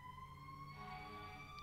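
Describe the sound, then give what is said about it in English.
A siren wails steadily, its rising tone sustained throughout against a low rumble of traffic, with no talking over it. “I hope it's not fire trucks.”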